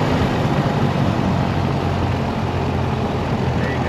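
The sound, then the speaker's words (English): A Piper PA28 propeller airplane engine idles steadily, a loud, continuous low rumble with a throbbing drone that holds even throughout, with no voices heard. “All right, so you look outside, clear prop, no dog running in front of the airplane.”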